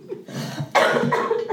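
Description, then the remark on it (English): A person coughs, a rough, raspy burst of coughing that starts low and turns into a loud, harsh hack, with no talking in between. “I got a cough.”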